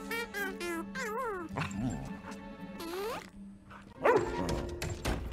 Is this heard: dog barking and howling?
yes